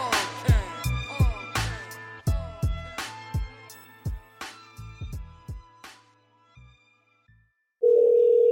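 A quick run of punchy telephone dialing beeps that form an almost tune-like pattern and gradually fade, then a brief pause before a steady, continuous ringing tone starts.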